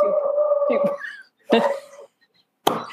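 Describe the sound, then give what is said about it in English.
A dog barks three times in separate bursts, the first a longer, drawn-out bark and the next two short and sharp, with brief silences between and no talking. “That was not my dog.”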